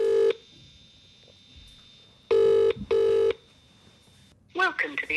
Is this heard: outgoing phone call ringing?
yes